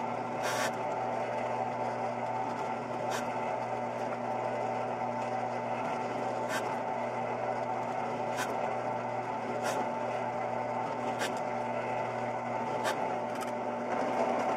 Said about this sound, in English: What you do is you take the spot weld cutter, put it on the PC board, and then you just drill out the little islands everywhere you need them.